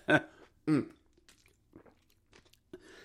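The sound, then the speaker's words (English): Two loud coughs in quick succession, each a sharp raspy burst, followed by quieter mouth clicks and faint rustling with no talking. “Cough.”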